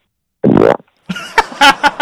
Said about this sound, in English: You hear it or no? Oh, yeah. Wow. Oh, that that really did just sound like you shit your pants.